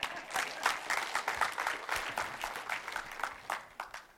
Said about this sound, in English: Give her a hand clap.